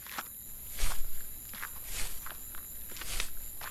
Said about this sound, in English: Stop! There! The other footsteps stop immediately after ours.